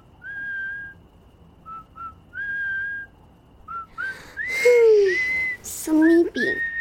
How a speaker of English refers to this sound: whistling's doing the trick. Clever whistling, Potato. Huh? Okay. Oh. What is it? Oh. What? You aren't making the whistling noise? Oh, it's coming from the window.